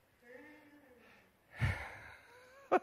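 A drawn-out, low vocal groan resembling a yawn, fading into a breathy exhale, followed by a short sharp sound at the end. Fairly close and moderately quiet.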